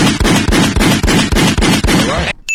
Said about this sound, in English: Yeah, that's gunshots.